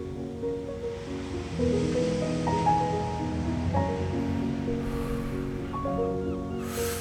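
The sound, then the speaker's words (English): Steady ocean surf rushes and washes continuously, with a couple of brighter swells near the end, while soft sustained musical tones drift over the water. No one speaks. “Now it's time to move into the waves. Feel them washing past you. Crashing up and splashing you in the face as you move your way.”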